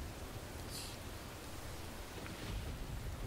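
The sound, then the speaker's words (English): Steady rain hisses throughout a storm with lightning flashing outside, with a low rumble of thunder swelling toward the end. It is fairly quiet, with no voices. “and she points out to the storm that's flashing outside”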